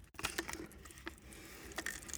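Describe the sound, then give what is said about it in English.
A Japanese candy snack pops and fizzes in a bottle of water, giving off faint, irregular crackles and sharp little snaps over a soft hiss, with no one talking. “Oh, it's popping in the water. Wow, you can hear that.”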